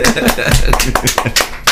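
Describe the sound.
A short burst of applause welcoming a special guest on the radio station Voice FM, irregular sharp claps from a small group, fairly loud and steady for under two seconds, with some voices mixed in underneath.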